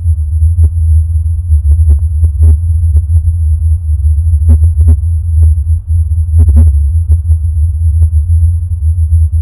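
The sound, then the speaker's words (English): A recording of the Taos hum: a deep, steady low droning hum runs unbroken throughout, loud, with faint irregular ticks and soft thumps scattered over it and no voices. “And I'll play another couple seconds of the Taos hum here just to hear it.”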